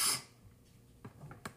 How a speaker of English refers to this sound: I did not just do cocaine. It's just me you know, clearing my nose, sniffing my nose, doing that. Yeah, it's really bad.